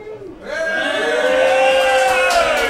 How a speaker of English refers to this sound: Oh, now you cheer.